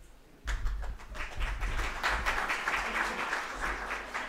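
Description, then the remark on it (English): Audience applause bursts in suddenly and holds steady as a guest lecturer is welcomed: a dense wash of many hands clapping, bright and crackly, fairly loud and sustained for several seconds with no clear voices. “Don't applaud now. Wait till the end.”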